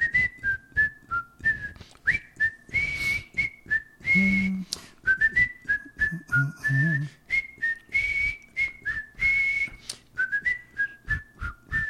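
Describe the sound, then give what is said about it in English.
A person whistles a song melody, a steady run of clear pitched notes with short breaths between phrases, lasting the whole stretch with no talking. “I'm going to try to whistle this one.”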